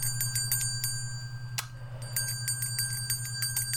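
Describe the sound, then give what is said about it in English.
A small book bell is rung twice, in two bright, rapidly trilling bursts separated by a brief pause, fairly loud over a steady low hum. “let's ring the book bell for Dog Mountain, an excellent novel.”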